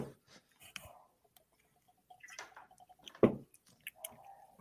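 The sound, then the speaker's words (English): Jim Beam whiskey being drunk straight from the bottle as a shot for a lost bet: a steady run of short, hollow glugs at a quick, even pace, fairly quiet, ending with a louder gulp and a few wet swallowing sounds. “No, I wanted them to hear the glugs, man.”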